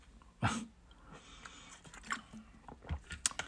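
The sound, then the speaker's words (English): Someone drinks water: a few soft, wet sips and swallows with small mouth clicks at irregular intervals, fairly quiet, with no talking. “I'm over here drinking water because, of course, mouth is getting a little bit, well, actually my throat.”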